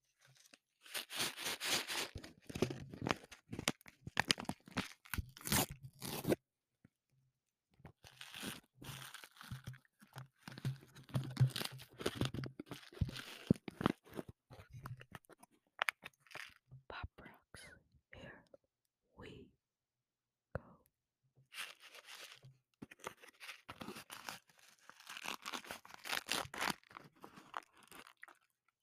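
Pop rocks candy crackles in dense, sharp bursts of tiny pops and fizzing snaps, coming in three main flurries with sparser crackles between, alongside faint whispering.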